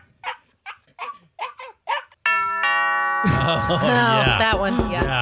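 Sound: dog barking and whimpering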